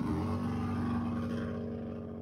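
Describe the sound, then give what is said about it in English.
An old-school motorcycle (a hog) doing wheelies revs loudly and steadily, a deep throbbing rumble with a strong low hum that holds for a couple of seconds before easing slightly, with no voices. “That thick, evil Knievel on that fucking hog, man. I hate the loud vehicles, though, man.”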